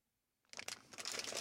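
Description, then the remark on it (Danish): A bag of licorice candy crinkles and rustles, starting after a moment of silence and continuing as a dense, crackly stretch of plastic noise while someone snacks on the licorice. “Men man kan høre lyden af lakridserne.”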